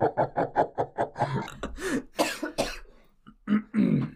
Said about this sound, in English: Coughing on the creeper.